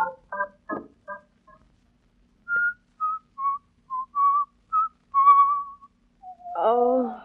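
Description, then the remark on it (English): A person whistles the tune "Turkey in the Straw", a bouncy run of clear, high-pitched notes in quick rhythm, preceded by a few short vocal sounds and ending with a brief voice. “Oh, stop whistling that turkey in the straw.”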